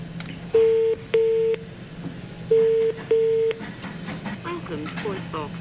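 A telephone ringback tone sounds over a call line in two double-ring bursts separated by a pause, fairly loud and clear, as the unanswered call rings out to voicemail, followed by faint muffled chatter.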